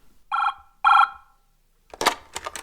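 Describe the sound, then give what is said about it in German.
A telephone rings twice in short, evenly spaced electronic bursts, then a clattering rustle follows, like a handset being lifted. No one speaks. “Kaum war er vom Briefkasten zurückgekommen, als das Telefon klingelte.”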